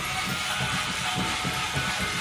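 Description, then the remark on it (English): A toy dog-shaped car, with little ears like a dog, wheels and a nose that doubles as a front light, makes its noise: a steady, hissy electronic buzz with a quick, regular low throbbing pulsing underneath, running for about two seconds with no talking. “Now, this little car she actually got in this box, and it's a dog car. It has little ears like a dog and wheels like a car and a nose that could be the front light but is also a nose, and it makes this sort of a noise.”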